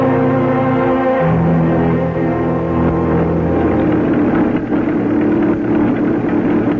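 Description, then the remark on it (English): A car driven by a woman runs steadily and loudly throughout, a continuous droning engine hum whose pitch shifts slightly partway through, with no voices. “Are you surprised to see a woman driving a car?”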